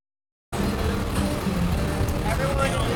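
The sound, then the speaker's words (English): Outdoor bustle at a charity truck pull in the Bay Area, in front of a giant aircraft carrier: a steady low rumble of a heavy truck being pulled along by people, with indistinct crowd voices mixed in, starting abruptly after a brief silence. “There are sounds of the Move for Hunger truck pull, where they are raising awareness, moving trucks, of course, in the Bay Area, in front of a giant aircraft carrier, all to help the cause of food insecurity in the United States.”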